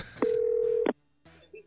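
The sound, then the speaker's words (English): A single steady telephone dialing tone sounds for under a second with clicky edges as a phone call is placed. A short pause follows, then quieter, muffled sounds. “Please gather your thoughts, if you would, as we go to the phone call of weed on the church bus.”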